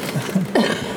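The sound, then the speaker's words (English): A harsh, breathy cough bursts out partway through, with rough throaty rasps before and after it. No words are spoken. “I want to cough now. I still have one in me.”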